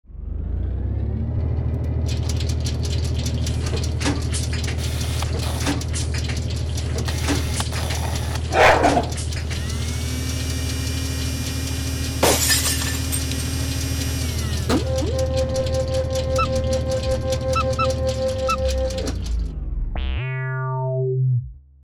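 A random number generator machine hums steadily throughout, broken by a noisy crackling burst and then a sharp pop as its vacuum tube blows out, ending in a falling series of stuttering electronic tones.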